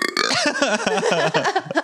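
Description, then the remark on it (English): A single long, loud burp, drawn out for nearly two seconds with a rough, wavering voiced tone that gurgles and shifts pitch before cutting off. “You at least didn't remove the burp curse.”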